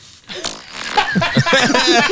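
A loud, raspy fart rumbles and sputters for about two seconds in uneven fluttering bursts, close to the mic, with no talking over it.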